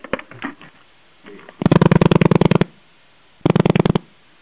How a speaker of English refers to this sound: Is that a rotary dial phone?